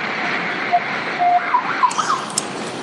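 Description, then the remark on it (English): A loud, steady rushing roar of a train passing on overhead tracks, heard from underneath them while crossing a highway, with brief high metallic squeals and whines breaking through the noise. No one speaks. “Hold on, the train's here again.”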